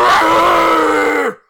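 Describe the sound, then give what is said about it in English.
A voice imitates the battle roar of humanoid creatures with long, tangled hair bursting out of the ground: one loud, sustained, guttural growl held steady for over a second, then dropping in pitch and cutting off abruptly. “And they all let out this loud, it sounds like maybe like a battle roar or something like that. It's very guttural.”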